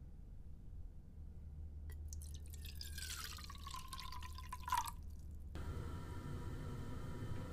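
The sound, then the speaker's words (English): Water splashes and pours from a fresh container of water, used to splash on a face, for about three seconds, with a falling gurgling tone, then stops, leaving a low steady hum and faint background noise. “He has given me a fresh container of water to splash on my face.”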